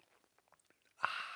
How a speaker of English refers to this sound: Fill it with your favorite liquid. I like coffee. And join me now for the unparalleled pleasure, the dopamine hit of the day, the thing that makes everything better. It's called the simultaneous sip. It happens now. Go.